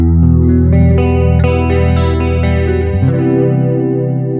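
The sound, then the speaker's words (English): An electric guitar plays sustained chords through an amp on the Silver Ship preset, with a roomy reverb, the notes ringing out and blooming into a wide, spacious wash. It is loud and alone, with no talking. “Yeah, it looks like it has a definitely more reverb on it.”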